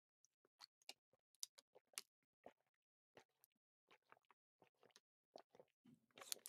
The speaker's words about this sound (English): My wife just brought me some water. She's a doll. Hold on. Let me take a quick sip.